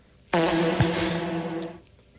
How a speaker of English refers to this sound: I have to use the fart sound effect once a week. I think that was the agreement. He's like, you can only put it on the soundboard if you use